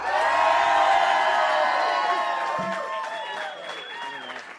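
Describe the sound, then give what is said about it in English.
An audience at Forever House bursts into loud applause mixed with cheering and high whoops as a guest is welcomed, a dense wall of clapping and shouting voices that holds steady and only slightly eases toward the end. “give him a warm Forever House welcome. 1, 2, 3.”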